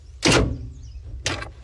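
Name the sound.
door sound effect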